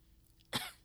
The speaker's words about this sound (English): Like, you just need to cough and, like, clear your chest out. Every time I inhaled, I'm certain he could hear it, too. That's how loud it was. You could just hear rumbling in my chest, and I would go...